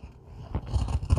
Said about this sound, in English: All right, where is my scissors? And I will just cut this with scissors because it's right here.